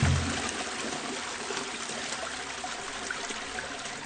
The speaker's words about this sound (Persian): قشنگ یه سیفون کشیدن روش رفت پایین.